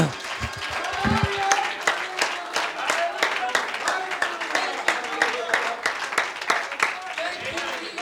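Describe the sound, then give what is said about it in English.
An audience claps hands unto the Lord in praise, a dense, steady stream of applause with a loose rhythmic pulse, while voices call out over it. “If you believe that God is about to do it, can you clap your hands unto the Lord and give him praise?”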